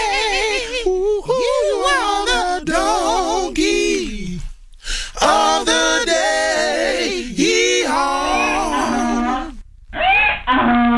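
A vocal group sings a short, loud, harmonized sting introducing the radio segment Donkey of the Day, melodic phrases with wavering, sustained notes, breaking off briefly near the middle and closing with a short held chord.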